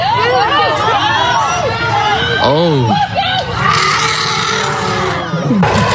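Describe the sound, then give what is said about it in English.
An elephant in a zoo elephant habitat roars and charges at a man and his two-year-old son who got inside, while people scream; loud, wavering high-pitched shrieks and shouting overlap continuously, with a strong rising-and-falling bellow cutting through the chaos midway. “Once they got inside, elephant roared and started charging at them. Here's some audio.”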